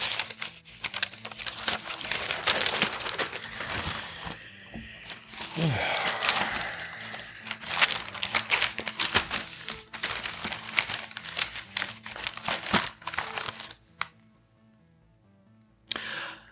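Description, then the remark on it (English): Paper pages rustle and crinkle steadily for several seconds, with dense crackling bursts and a few sharp flips, then a brief pause before a final crisp rustle, as someone flips through a publication looking for page 16A. “Hold on, is 16A even in this thing? It is.”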